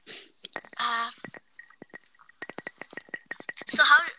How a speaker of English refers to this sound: Listen to me tapping glass.